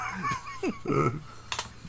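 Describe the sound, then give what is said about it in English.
A sharp, heavy clatter as a hand slams down on typewriter keys, one loud impact near the end, with rising and falling vocal sounds just before it. “She just walks in and slams her hand down on his typewriter.”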